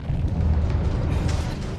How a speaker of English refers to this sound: Just a tremor. Nothing to be concerned with.